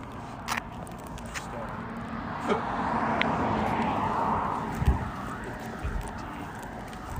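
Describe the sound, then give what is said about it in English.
A car's engine swells and fades as it passes, with a broad rushing hum peaking midway, plus a few scattered clicks and bumps. “Yeah, it's a car.”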